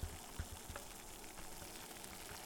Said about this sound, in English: The water here is just starting to boil.